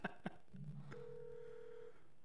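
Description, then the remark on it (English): Two quick clicks, then electronic phone-line tones: a low buzzing pair of notes followed by a steady, sustained beep of about a second, as an incoming call is connected. No voices. “Do you want to accept a call?”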